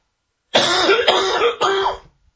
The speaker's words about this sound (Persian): فقط سرفه رو من راه دور بشنوید ببینید.